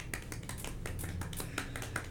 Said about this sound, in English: So let's give a golf clap to... A golf clap.